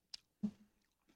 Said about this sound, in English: Thought you couldn't hear over the crunching.